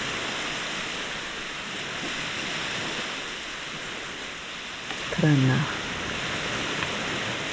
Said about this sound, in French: En gaélique irlandais, ils ont, il y a un mot, strana. C'est la voix, le murmure des vagues juste quand les vagues se retirent des rivages.